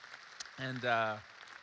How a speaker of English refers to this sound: And yeah, you can cheer for that. It's awesome.